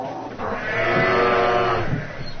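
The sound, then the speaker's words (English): A single drawn-out cow call sound effect, loud, holding a wavering tone for about two seconds before trailing off, with no voices around it. “we have the farm animals, so that's a catchphrase that I'm not very comfortable with.”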